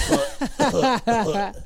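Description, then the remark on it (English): A voice imitates a cough in several short, rough, voiced bursts, fairly loud, with brief gaps between them and a slightly chuckling quality. “All the boys used to be after me, and now when I get excited, it coughs.”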